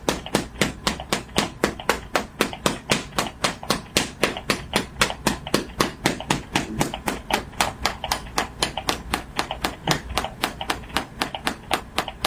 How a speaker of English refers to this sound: but for the ribs, we're going to open up also with the hammer, okay,